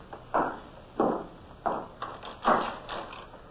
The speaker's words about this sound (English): Oh, shut the door, please